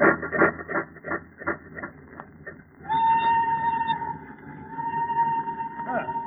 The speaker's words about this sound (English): Our train is due in Eddington very shortly.